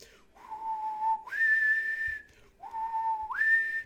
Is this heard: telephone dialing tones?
no